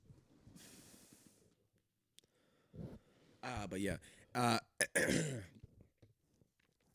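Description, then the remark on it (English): A throaty burp rumbles out in a few voiced bursts, preceded by soft breathy noise and followed by a brief throat-clearing sound. “Burping on the scene, my love.”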